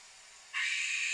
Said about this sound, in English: Also a death whistle. Yeah. Whistles, and they are haunting. They're super creepy, super loud, and we have a couple of different ones just to try out for you.